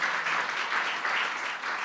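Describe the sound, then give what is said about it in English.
A crowd applauds the volunteers of the children's ministry: a steady, dense, even wash of many hands clapping at once with no voices standing out, holding at a consistent loudness throughout. “Can you guys give a round of applause to the people that are volunteering with the kids?”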